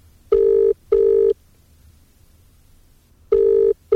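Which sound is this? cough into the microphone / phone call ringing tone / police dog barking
phone call ringing tone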